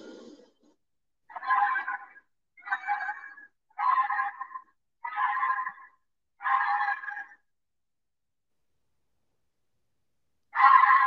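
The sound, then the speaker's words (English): A recorded Wampus cat call: five harsh, strained yowling cries repeated at a steady pace, each under a second long, followed by a pause and one more cry, with no talking. “Hey, I found some recordings of the Wampus cat.”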